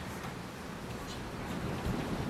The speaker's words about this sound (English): And I apologize, today is very, very windy, but it feels nice and light. And just know that wind moves energy around, and we are grateful for you, wind.